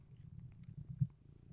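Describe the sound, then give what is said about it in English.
A female domestic cat purrs steadily while rubbing her head, a low rumbling drone that pulses in soft rhythmic waves, with no talking over it. “She a cast kitty.”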